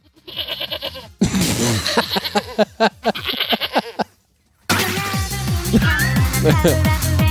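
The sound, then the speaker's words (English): A goat bleat sound effect played by an Alexa device: a goat bleats repeatedly in loud, wavering, nasal cries with a quivering pitch, broken by a brief pause before another long run of harsh bleating. “Here's a goat bleat.”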